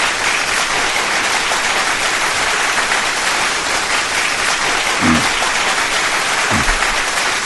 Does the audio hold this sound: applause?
yes